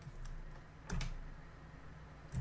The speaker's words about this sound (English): Now, What I had to do, because JAWS was loaded later, I had to press JAWS key with number 3 to pass it through, and I had to press caps lock with numpad 7 or numpad home. My setup is such that insert keys act as JAWS key and NVDA uses caps lock key.